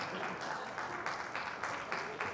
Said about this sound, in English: Again, I don't know why you're clapping, but just give me bomber tickets, Friday games, Saturday games.